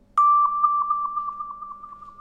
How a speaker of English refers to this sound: This is a wah tube. But it has a little hole on the side, and by covering the hole and releasing it, you can go like this.